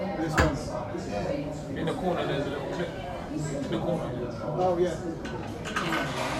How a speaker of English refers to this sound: Shut that door for us.